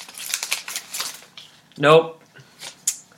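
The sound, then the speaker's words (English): Crinkly rustling of paper being handled and flipped over in several quick bursts as someone checks the back of it, with a brief murmured voice sound partway through before more rustling. “There might be something on the back of this. Let me go ahead and check the paper.”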